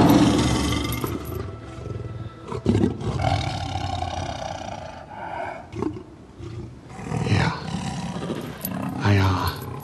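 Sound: tiger roaring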